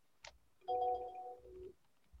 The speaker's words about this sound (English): Let me turn off my phone ringer. Well, it's my ringtone too. So I was I thought it was my phone.